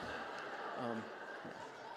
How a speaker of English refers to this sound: Sorry, but I heard some gasps there. I'm kidding.